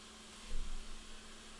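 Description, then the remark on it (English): A dishwasher running: a steady, fairly quiet wash of hissing noise over a low mechanical hum, with a brief rumbling swell partway through. No one speaks. “Oh, it's a dishwasher.”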